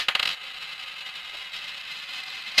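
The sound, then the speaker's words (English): A coin is tossed to pick a football tip, giving a quick flurry of high metallic ringing clinks, then a quiet stretch before one more short bright clink at the end. No one speaks. “Coin is going for Essendon.”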